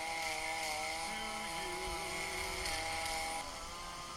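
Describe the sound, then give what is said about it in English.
A chainsaw with a real spinning chain runs continuously at high revs while being juggled, sparks flying, its buzzing engine whine loud, wavering slightly in pitch over about four seconds with no talking. “Or I can juggle with this chainsaw with a real spinning chain, sparks flying and all.”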